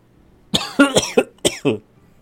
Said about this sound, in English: Are you sure you're all right with that cough? I'm fine.